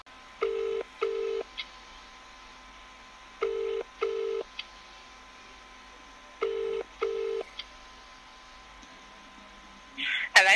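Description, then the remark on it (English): A phone line ringing out, with three pairs of steady double ring tones evenly spaced over quiet line hiss, before a voice briefly answers at the very end. “Oh, just ring his wife.”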